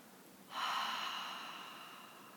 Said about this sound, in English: Deeply through the nose, exhale through the mouth.